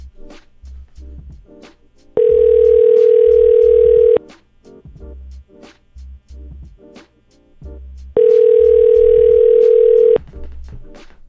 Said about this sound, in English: Yeah, okay, we're ringing.